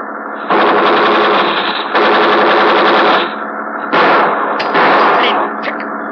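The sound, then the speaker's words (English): Bursts of rapid automatic gunfire, fired in front of a man to slow him down, crackle loudly in several sustained volleys, each a dense rattle of shots, with short lulls between them and a low rumble underneath. “We fire in front of him. That's slowing him down.”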